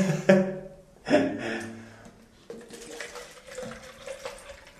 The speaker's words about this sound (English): And the water should, in theory, go up, run through all my sinuses and come back down out the other nostril. It's one nostril done. It's probably as pleasant to watch as it is to listen to, isn't it?